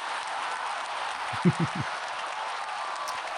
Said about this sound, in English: We love our Canadians. Round of applause for Canadians.